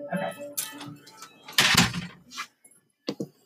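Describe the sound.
A door opens with a short, loud clatter and scrape near the middle, followed by a couple of softer knocks, while faint voices murmur at the start.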